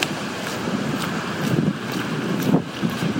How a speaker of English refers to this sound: What a lousy goddamn day it is. Rainy. A little bit of wind.